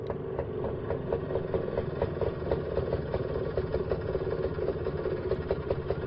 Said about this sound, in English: So if you're worried, don't worry. The Scooter only goes this fast.